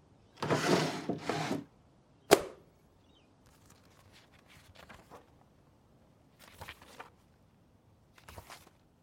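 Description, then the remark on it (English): A desk drawer slides open with a scraping rush, followed by a sharp knock, then softer rustling and shuffling as a binder is lifted out, with no talking. “You should have a binder in the desk drawer.”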